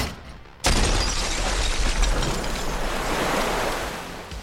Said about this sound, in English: And then finally, coming forward with this knee, you smash this hole, which just causes this whole chain reaction of the glass to shatter outwards.